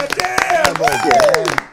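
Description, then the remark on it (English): Several people clap their hands in a quick, uneven burst of applause to welcome former NFL quarterback Dan Orlovsky as a guest, fairly loud, with voices calling out and cheering over the claps. “Yeah, we should clap.”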